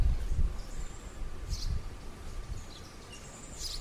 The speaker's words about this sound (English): What kind of bird? There he is. The fucking hey, sparrow. Birdie. Hey, birdie. Red sparrow. Oh, my God. Red sparrow.